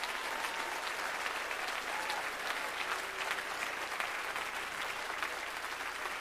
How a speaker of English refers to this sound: Can you clap your hands unto the Lord? If you're excited, can you clap your hands a little bit louder?